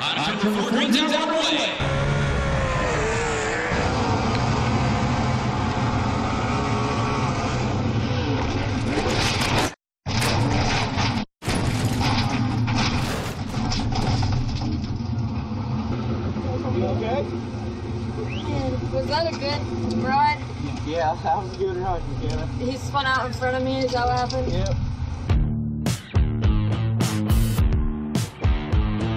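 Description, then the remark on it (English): Loud, continuous roar of sprint car engines at the Knoxville Raceway dirt track in South Central Iowa at night, as heat race number one heads out to the staging area, rising and falling as they rev and pass by, with a voice talking under the din and two brief cuts in the noise. “We thank you, race fans, on a gorgeous South Central Iowa night here at the Knoxville Raceway, the sprint car capital of the world, as heat race number one gets set to make their way out into the staging area.”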